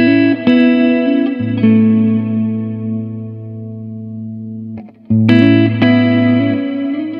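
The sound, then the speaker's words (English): An instrument played through a Blume effects pedal: a few struck chords ring out over a steady, thick low drone, their shimmering, processed tones sustaining and slowly fading, with no voices. “how to use the Blume in action, because he says he uses it all”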